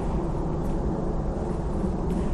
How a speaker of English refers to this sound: Hear that? There's a plane going overhead annoyingly. Very distant actually.